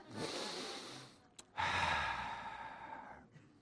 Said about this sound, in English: Just keep breathing, church. Breathe in, breathe out. Breathe in, breathe. Just practice that for a moment.